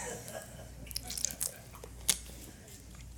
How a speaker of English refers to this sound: Can I just take a sip of water, please?